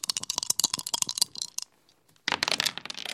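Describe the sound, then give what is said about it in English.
Dice are shaken in a quick, dense burst of clicking for over a second, then after a brief silence comes a second loud clatter as they are rolled, tumble and settle. “Well, I'm going to give my dice a little shooky shake, as they say.”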